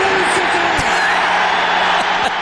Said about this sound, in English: The crowd reaction is amazing. One of the greatest moments in NFL history,